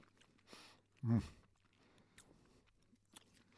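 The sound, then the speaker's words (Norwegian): Someone chews sour candy with moist, smacking mouth sounds and a few sharp crunchy bursts at irregular intervals, the loudest coming early, over a low steady hum. “Det tygger jeg.”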